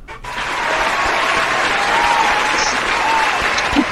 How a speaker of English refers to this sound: Okay, I'm gonna have to give you the round of applause for that one. I'm gonna give you the round of applause if I can find it. There we go. There you go.